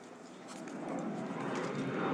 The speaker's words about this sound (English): Wait, do I hear a cargo plane?